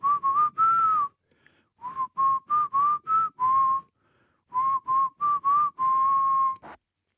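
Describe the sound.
Someone whistles a pop band's theme tune alone, in three bouncy phrases of short, clipped mid-pitched notes, each phrase ending on a longer held note, with brief pauses between.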